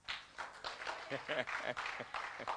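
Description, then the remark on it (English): A church audience claps their hands to God during a service, a dense wash of many hands filling the whole stretch, with a few raised voices calling out over the applause partway through. “Won't you clap your hands to that?”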